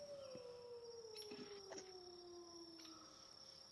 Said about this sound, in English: Hear a few howls let loose among them.